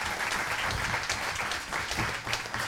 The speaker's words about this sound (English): we want to give applause for all those who helped us sell the tickets.